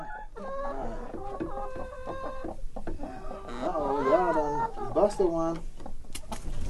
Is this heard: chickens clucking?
yes